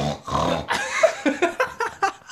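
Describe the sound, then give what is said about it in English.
A voice imitates Daddy Pig from Peppa Pig: a couple of drawn-out nasal grunts, then a quick rhythmic run of about six short snorting oinks, fairly loud, with no other talking. “It's your daddy pig.”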